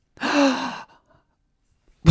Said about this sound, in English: Did you just gasp looking at the train whistle?